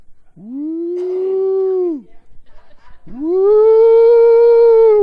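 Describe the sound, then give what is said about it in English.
A voice imitates a train whistle with two long, loud hooting wails, each sliding up then holding steady; the second is higher and fuller, with a brief breathy pause between them. “he would start making like a train.”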